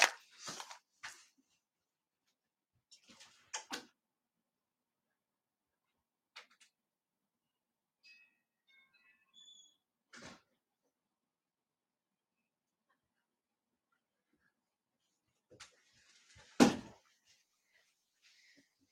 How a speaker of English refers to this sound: So I am actually, because it is like 40 degrees out, going to take a pause here and go shut my door. I will be right back.